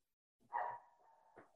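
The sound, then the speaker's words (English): A male pet dog barks loudly, a sharp bark that trails into a drawn-out whine, then a second shorter yelp a moment later, with no one talking. “My dog's just like losing it.”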